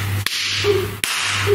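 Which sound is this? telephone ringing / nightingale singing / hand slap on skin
hand slap on skin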